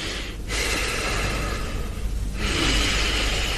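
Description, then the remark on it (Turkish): A patient takes deep, audible breaths while a doctor listens to their back during an examination: a long, airy inhale followed by a strong exhale, steady and fairly loud with no talking over it. “Nefes alın.”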